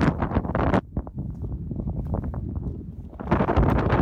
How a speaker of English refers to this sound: this was taken outside and it was windy. Frustrating morning. If you see these conditions, it's windy and big waves.